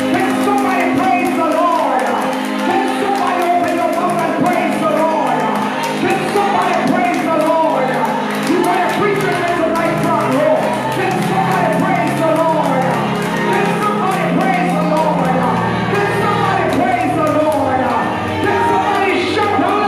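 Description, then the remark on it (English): A large crowd claps and cheers together, with shouts and whoops rising over a steady, loud wall of sound that continues without a break, clapping their hands for the Lord at a preaching gathering. “Can somebody clap your hands for the Lord?”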